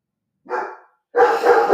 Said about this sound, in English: Sorry, y'all. Dog.